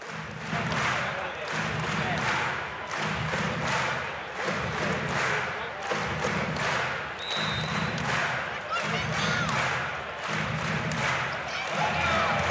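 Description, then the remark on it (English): A loud, steady roar from a big Wildcats basketball arena crowd, the Red Army fans on their feet, with rhythmic low thuds repeating every second or so beneath the continuous cheering and noise. “Big crowd, lots of noise. Red Army on their feet.”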